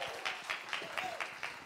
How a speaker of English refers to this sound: Well, let's give him a big round of applause.